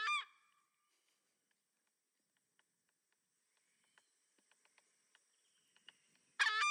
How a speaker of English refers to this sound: So it's very goose-like. Yeah. I guess it is kind of amelodious, though. It's like an accent. It's like a gesture.